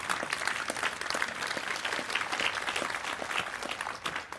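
An audience at the Adressesamtalen talk during the Olavsfest festival claps after a presentation on inequality, steadily, a dense wash of many hands with no breaks, holding at a moderate level for several seconds and no voices rising above it.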